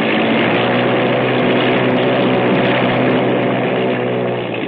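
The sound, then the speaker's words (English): A loud aircraft engine revs up and roars at high power, its droning propeller noise steady and continuous for several seconds, with no voices. “Well, she revs up okay”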